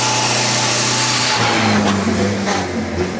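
The engine of a 1929 Bugatti Type 40 Grand Sport runs loudly, a steady mechanical drone whose pitch rises slightly midway as if revved a little, with no voices over it.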